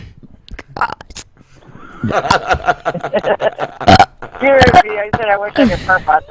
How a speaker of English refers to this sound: What? I wish I could burp on demand.